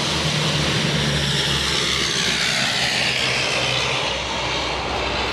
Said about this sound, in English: Oh, wait, another plane. A plane. It's the plane. The plane. For those that don't live in Reykjavik.